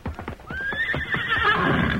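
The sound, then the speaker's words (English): A horse whinnies in a long, wavering neigh while hooves clop in a steady rhythm beneath it. There is no talking. “I was waiting around front with my horse.”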